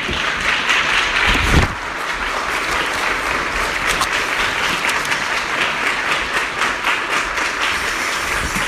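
An audience applauds steadily, a dense, even wash of many hands clapping at a constant loud level for the whole stretch, with no voices rising above it.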